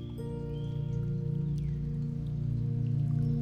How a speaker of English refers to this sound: Good morning, beautiful. This week's meditations are full of water sounds.